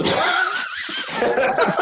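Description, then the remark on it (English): A long, honking nose blow into a tissue, a loud breathy rush with a wavering nasal whistle running through it for nearly two seconds. “If you're gonna blow your nose, take off your mic.”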